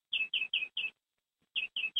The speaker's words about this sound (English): Who's got birds chirping? Me. They're happy to be on the call.